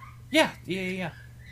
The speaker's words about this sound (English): Oh, they're just playing. Let the dogs be dogs.